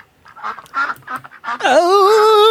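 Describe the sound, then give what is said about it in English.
A run of short, nasal duck quacks in quick succession, then a long, loud, drawn-out squawk that rises in pitch and holds to the end, unaccompanied by talk. “The fucking ducks and … are so funny”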